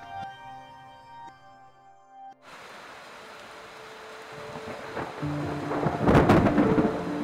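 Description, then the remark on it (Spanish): After a brief soft tonal hum, heavy rain suddenly pours down in a steady hiss, and a loud rumble of thunder rolls through toward the end of a fierce electrical storm in the jungle, brought by a hurricane that hit the state of Oaxaca, with lightning striking a few meters from cabins. “Esta tormenta eléctrica fue feroz.”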